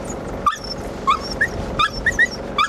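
A female dog in a ute whimpers and gives short, high yips in a rapid string of bursts, fairly loud over a steady low background rumble.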